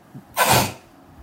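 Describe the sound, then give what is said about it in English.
A single short, muffled sneeze, held back so it comes out as a compressed burst of breathy hiss lasting under half a second, moderately loud, with quiet room noise around it. “I think you managed to sneeze inside your own body.”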